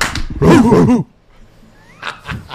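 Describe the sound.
Two hand claps, then a person loudly imitates a dog, letting out a quick burst of barking yelps, followed by quieter scattered voices in the background.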